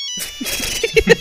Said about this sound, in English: You get a phone call.